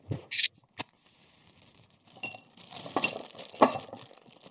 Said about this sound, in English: We're going to light a match. We're going to blow out the match and immediately throw it into the jar. And then we're going to replace the lid with a bag of ice. This is with the warm water in the jar.